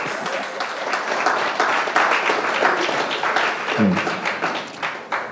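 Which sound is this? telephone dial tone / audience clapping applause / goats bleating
audience clapping applause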